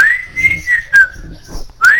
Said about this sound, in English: What's up with the fucking whistling? Jesus Christ.